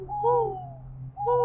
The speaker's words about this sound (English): I'm going to tell her to add in an owl hooting in the background.